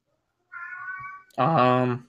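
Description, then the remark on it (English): A cat yowls loudly in two drawn-out cries: a thinner, higher wail, then after a brief pause a fuller, harsher scream that bends in pitch before cutting off. “I apologize if you hear the beast. Yeah, I can hear.”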